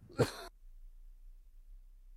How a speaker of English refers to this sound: And this morning, I want to look at two ways before I cough rudely into the microphone.